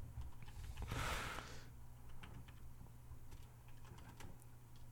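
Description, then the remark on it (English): Scattered keyboard clicks from someone typing, irregular and fairly close, over a steady low hum, with a brief louder rustling burst near the start and no talking. “I'm typing in episode 1000 One Piece.”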